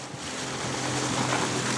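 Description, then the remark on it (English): A banana boat, a long, skinny dinghy-type boat, speeds over ocean waves in the Saposa Islands region of Papua New Guinea in light rain, its engine droning steadily beneath a constant rush of water and wind, loud throughout, with no one talking. “And a banana boat is like a long, skinny, dingy kind of boat for jumping around the islands.”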